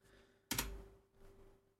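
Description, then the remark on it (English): A sharp computer keyboard clack opens a quiet stretch, followed by a few softer, muffled keystrokes tapping lightly. No one speaks, and the typing stays faint and brief. “I literally told you about how I got the other keyboard so that you wouldn't hear the tapping sound as I typed, but that's all right.”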